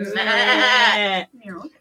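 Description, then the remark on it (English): A person imitates a typical dairy goat's bleat with one long, loud, wavering cry, followed by a couple of shorter, softer vocal sounds. “So go grab a kind of typical dairy goat.”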